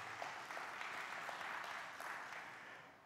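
A crowd applauds the speaker's wife of 52 years, a steady, dense wash of many hands clapping at an even level for about three seconds, with no voices on top.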